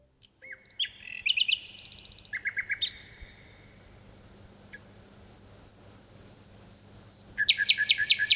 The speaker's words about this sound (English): We leave you this week with a bird noted for its beautiful singing, the nightingale. This nightingale song echoes across a deep valley in Dorset, England, and a tawny owl joins in.